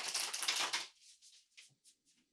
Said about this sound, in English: You can connect to the card just by hearing me shuffle them.